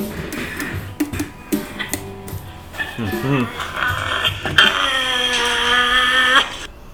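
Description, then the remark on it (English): A person makes a pig-like sound as hail starts falling, with a few short grunting, wavering vocal noises followed by a loud, sustained high-pitched squeal lasting about two seconds before cutting off. “It's just that's a sound I make when it hails out.”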